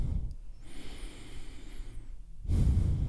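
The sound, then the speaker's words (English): A slow, deep breath drawn in with a soft, airy hiss during a guided breathing exercise with eyes closed, then a brief pause before a louder, rougher exhale begins, with no talking. “And let's just begin by breathing and notice the natural cadence of your breath.”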